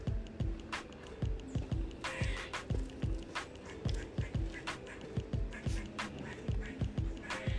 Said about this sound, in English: Don't know whether you can hear that, Poddies. There's a very cross squirrel in this tree. It's sort of squeaking angrily.